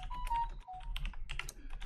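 household object, loud computer keyboard typing

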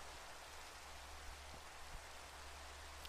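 nature, rain falling

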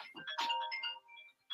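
signal or alarm, phone ringtone

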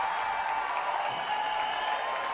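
crowd, crowd cheering and applauding

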